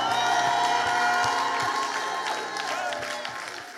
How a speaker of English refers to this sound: Can you clap your hands and give God a shout?